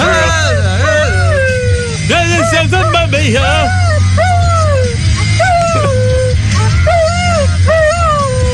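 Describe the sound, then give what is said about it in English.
A dog named Cody howls and whines along to a song in wavering, sliding high-pitched cries that rise and fall over a steady low hum of music, with a person briefly speaking partway through. “Dumb dog doesn't even know the words.”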